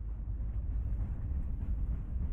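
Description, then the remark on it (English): A moving freight train gives off a steady, heavy rumble dominated by deep low tones, continuing evenly throughout without pauses. Moderately loud, with no voices present. “Next, hopping a mystery train may be the quickest way to escape.”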